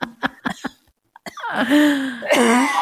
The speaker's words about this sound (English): And then I wheezed.